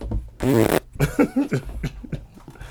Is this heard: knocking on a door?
no